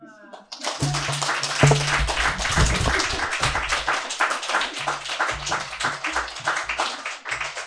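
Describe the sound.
An audience at an evening reading event applauds a reader steadily for several seconds, a dense, even wash of many hands clapping with some cheering voices mixed in, holding loud throughout before easing slightly at the end.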